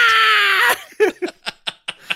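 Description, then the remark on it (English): A voice imitates a banshee's scream from a video game trailer: a loud, sustained, high-pitched wail that sags slightly in pitch for under a second, then breaks off into a quick run of short laughs. “It gets quiet and she turns into a banshee and goes, "Wah!"”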